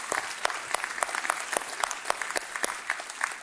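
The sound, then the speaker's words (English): A large crowd in Houston applauds steadily, cheering about $450,000 given to disaster relief, dense clapping with a few sharper claps standing out, sustained and moderately loud without any speech over it. “Can we just give a cheer for that?”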